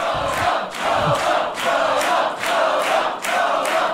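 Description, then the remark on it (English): A crowd at an arm wrestling match cheers and roars excitedly, a loud sustained wall of voices that swells and dips in rhythmic waves, like chanting or repeated shouts of approval. “The most predictable outcome has excited the crowd.”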